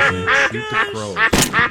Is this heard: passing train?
no